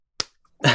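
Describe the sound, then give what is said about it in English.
Two sharp hand slaps imitating meat hitting the ground, separated by a brief pause, like something wet smacking the ground. The second hit rings out a little longer than the first. “And she says that she was 40 steps from her house when the meat started to slap the ground.”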